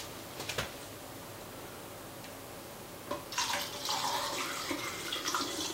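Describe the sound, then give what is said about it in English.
Fixer is poured steadily into a film developing tank, starting around three seconds in and running as a continuous splashing gush to the end, fairly loud after a few quiet clicks. “We're going to pour the fixer in.”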